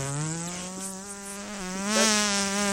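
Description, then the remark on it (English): A person blows a long, buzzing mouth fart, a steady low raspy drone that wavers slightly in pitch and swells a little louder near the end, with no talking. “Why you doing that fart sound with your mouth?”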